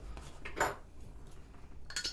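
Founders beer bottles being opened: a sharp metallic clink and hiss from a cap coming off, followed near the end by a second bright burst, with no talking.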